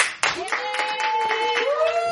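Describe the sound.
An audience claps and cheers together in answer to a question about who has ever suffered from anxiety, a steady wash of many hands under high, sustained whoops and voices, loud throughout the short burst.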